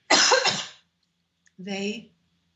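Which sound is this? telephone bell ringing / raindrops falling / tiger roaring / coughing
coughing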